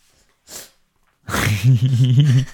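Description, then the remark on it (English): A short breathy sniff, then a loud, drawn-out snore that rattles and wavers in a low, throaty pitch for over a second, heard alone with no talking. “That was a good snore.”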